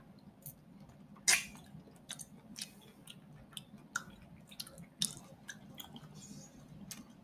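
Wet chewing with a sharp bite near the start as someone bites into a syrupy fruit, followed by irregular squishy, smacking mouth sounds over a low steady background hum.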